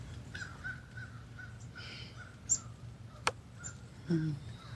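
Several crows caw from far off in the morning in repeated harsh calls, faint against a low steady background hum, with a few sharp clicks and small bird chirps mixed in.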